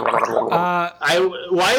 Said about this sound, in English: Why is he keep gargling water in his mouth? What does that mean? I think he's trying to show you. I'm just drinking. I'm just having a drink. I think he's trying to show you what turtle soup is.